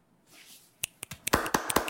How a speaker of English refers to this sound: It's snappy. Are we snapping? Are we clapping? Snapping and clapping.